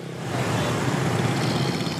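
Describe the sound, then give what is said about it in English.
Steady road traffic noise on traffic-jammed roads in the Mekong Delta, with cars and motorcycles rumbling past, a dense continuous wash of engines with no voices. “And shopping is about navigating traffic-jammed roads.”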